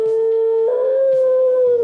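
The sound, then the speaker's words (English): A beagle, left alone while its owners are at work and filmed by a camera, plays the piano and lets out one long, steady howl that barely wavers, while a couple of struck piano notes ring out near the start and again midway through. “And he playing the piano, and he's singing all by himself.”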